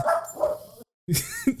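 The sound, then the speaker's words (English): A dog barks in a few sharp, loud bursts: a couple of barks, a brief pause of silence, then another short run of barks. “Listen, it's rather my dog or your dog that was going to do it one dog.”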